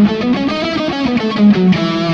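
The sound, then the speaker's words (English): A distorted electric guitar plays an E major scale, single notes stepping quickly one after another at a steady, fairly loud level, with no voices over it. “Really important to learn how to solo using chord tones versus just, like, let's say we were playing an E major scale.”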